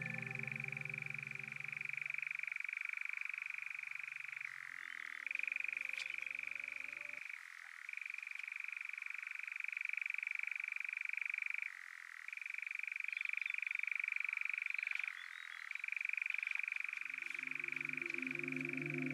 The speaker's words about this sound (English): They're only here for a few months in the summer and can mostly be found in southern parts of the UK. At dusk, males can be seen displaying to females, flying around them, wing clapping and making their distinctive chirring call.